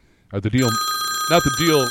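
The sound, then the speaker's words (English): A telephone rings for an incoming call with a steady, high electronic tone that starts partway in and holds to the end while a voice talks over it. “Let's see about taking a quick phone call here.”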